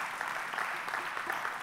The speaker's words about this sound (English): Let's clap that in.